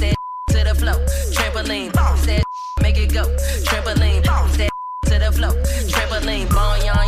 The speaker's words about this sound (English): What are you beeping out? The S word.